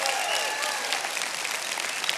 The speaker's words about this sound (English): Watch this. All right, now, round of applause for those of you who love naps. Love them.